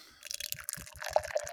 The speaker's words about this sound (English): Wait, now I gotta pour it.